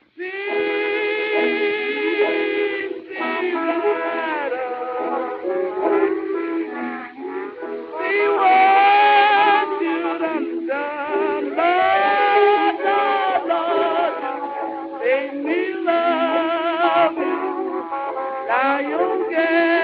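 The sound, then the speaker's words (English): An old 1920s blues record of one of a female blues singer's most famous songs plays: a wavering sung melody over steady accompaniment, with a thin, tinny, band-limited sound and no low bass, staying evenly loud throughout. “but let's jump ahead for a second and hear a clip from one of her most famous songs.”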